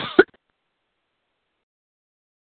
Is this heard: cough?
yes